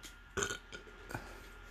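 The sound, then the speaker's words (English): A throaty belch rumbles out in a short burst, followed a moment later by a smaller second gurgle, with no talking around it. “I am so good at belches and so bad at belches.”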